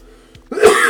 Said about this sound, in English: I'm coughing.